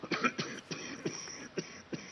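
Pope Francis, who has a cold, coughs repeatedly in short, harsh bursts during his Sunday blessing to pilgrims at St. Peter's Square, several coughs in a row with brief pauses between them, moderately loud with no talking.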